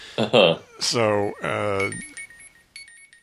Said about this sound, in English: God, alarm's going off.